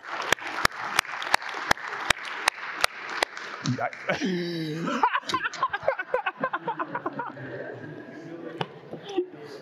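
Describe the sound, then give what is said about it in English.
A few slow, evenly spaced claps give way to a full round of audience applause for the tech team, loud and dense, mixed with cheering and whooping voices before slowly thinning out. “Can we applaud the super tech team?”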